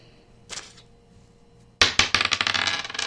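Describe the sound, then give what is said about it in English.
A brief rattle of a six-sided die (D6) being picked up, then it clatters onto a hard surface in a quick burst of bright, bouncing clicks that patter out rapidly, rolled for a physical contest in a storytelling game and landing on a 3. No one speaks. “All right, so grab that D6 and let's see if you get a 5 or 6 to avoid these horses.”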